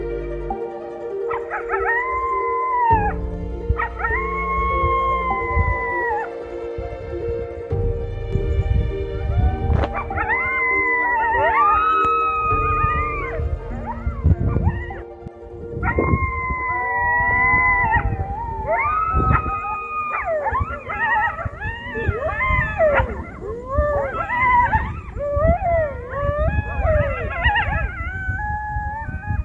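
Coyotes howling in a chorus of rising, wavering wails mixed with sharp yips, several voices overlapping and growing busier toward the end, over a steady low droning background.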